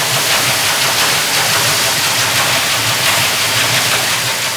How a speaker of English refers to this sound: And international trade has increased since 1960s to the point where the ocean is 10 times louder now than it was in 1970. And it's all shipping noise, this kind of low frequency, grumbling, thrashing noise.